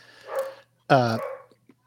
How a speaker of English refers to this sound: was that my dog? That was your dog. That is not my dog.